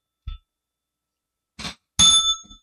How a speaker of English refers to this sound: I'm trying to ring the bell and mark the page, and the bell's flying under the, yes. under the desk.